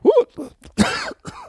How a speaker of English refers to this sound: Got me coughing.